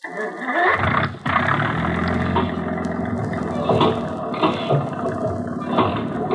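An engine catches after a brief moment and settles into a loud, steady rumbling roar that runs throughout, with a low droning hum and occasional rises in intensity.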